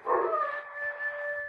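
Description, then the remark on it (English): A wolf howls in the rain in one long, steady, mournful note that holds its pitch without breaking, heard on its own with no voices, at moderate loudness. “Wolf. He's hungry, too.”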